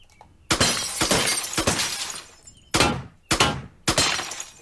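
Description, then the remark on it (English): Glass bottles shattering from shots: about six loud, sharp, bright crashes, three close together then three more after a short pause, each ringing out briefly. No one speaks. “Think I can hit that bottle?”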